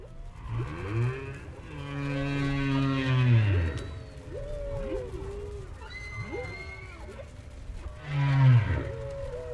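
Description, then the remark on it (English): Humpback whale song recorded by Roger Payne at Argus Bank, about 30 miles off the coast of Bermuda: long, sweeping harmonic moans rising and falling, interspersed with shorter upward whoops and chirps, echoing over a low rumbling underwater background with no talking. “Sing there the whole night long.”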